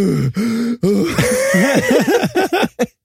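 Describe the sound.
A voice mimics a cameraman heavily huffing and puffing as he swings a handheld camera, a run of strained, voiced grunts and breathy gasps in quick uneven bursts, speeding up toward the end with no words.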